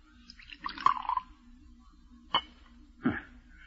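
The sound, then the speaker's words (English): Poison is poured briefly into a tumbler with a soft, bubbly gurgle, then two small drips or light clinks follow a moment apart. Quiet, with no talking. “Pour it out.”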